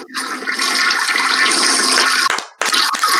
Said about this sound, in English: before we go though, the chat's asking, can we get a flush before you leave? Oh, listen, I ain't no scrub on this. Of course I got that ready. Let's go.